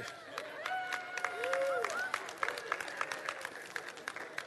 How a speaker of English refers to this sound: Good morning. Thank you for that riotous applause of welcome.